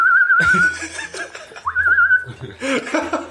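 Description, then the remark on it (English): Two short warbling whistled tones, each rising and trilling, sound while several people laugh and chuckle loudly around them. “Just going to walk around whistling.”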